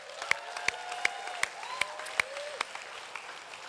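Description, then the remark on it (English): An audience applauds the team serving breakfast and cleaning the toilets and showers: sharp, evenly spaced claps ring out about seven times, over a low crowd murmur and a faint rising whistle-like tone, then the clapping thins out and fades. “Although, having said what I said earlier, yeah, they do need a round of applause, yeah.”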